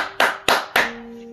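A brief bit of applause: three loud, sharp claps at an even pace, each ringing out briefly, with a faint steady hum underneath and no voices.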